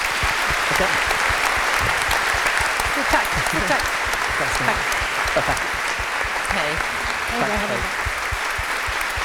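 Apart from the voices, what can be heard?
audience applause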